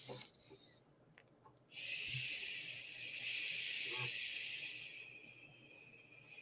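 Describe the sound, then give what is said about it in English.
A single long, steady whispered "shh" exhale made by a voice breathing out slowly, fairly loud, starting after a short quiet pause and holding its hiss evenly for several seconds before tapering slightly. “is shh, right? And so you're breathing out slowly and almost at a whisper.”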